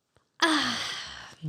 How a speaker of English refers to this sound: Big old yawn.